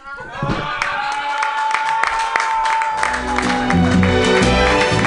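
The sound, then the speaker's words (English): A crowd bursts into applause with whoops and cheers after a spoken word comedy poem about Donald Trump, dense clapping filling the sound at a steady, loud level, with some voices shouting over it. “Keep clapping!”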